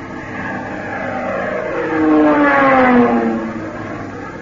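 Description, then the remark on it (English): A warplane diving at 12 o'clock: its engine roars steadily, the droning pitch climbing and swelling louder mid-way as it dives, then sliding back down as the sound eases off. No voices are heard. “Plane diving at 12 o'clock.”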